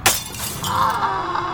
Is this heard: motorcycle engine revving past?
no